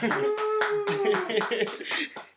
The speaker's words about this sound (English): You heard one person woo and clap there. But that doesn't mean there's only one person. There might be two people. There might be three. There might be 1,000.